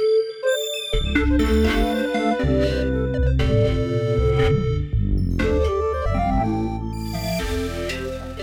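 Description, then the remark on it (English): A loud factory alarm bell rings out in a series of sustained, tonal notes that shift pitch roughly every second, continuing steadily for several seconds with no one talking. “It's the factory alarm.”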